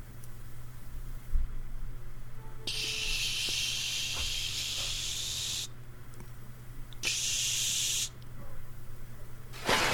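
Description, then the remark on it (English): Water is poured onto a bed where people are asleep, in two bursts of steady, hissing splatter, the first about three seconds long and the second shorter, over a low constant hum with no talking. “Here, I'm going to just pour some water on.”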